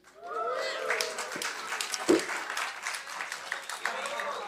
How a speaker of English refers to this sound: You know how many times I said Jesus' name today and you didn't clap that loud? Love you guys too.